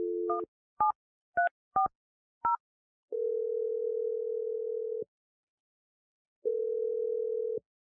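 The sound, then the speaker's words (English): Five quick touch-tone beeps as a phone number is dialed to make a call, followed by a long steady telephone tone that stops, pauses, and returns. Clear, with no voices. “I'm going to dial the number and let you make your call.”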